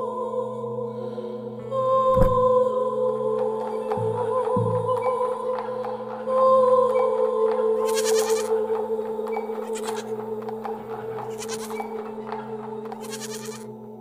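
A goat bleats loudly in long, wavering, drawn-out cries that run almost continuously, with a few short sharp noises early on and no talking.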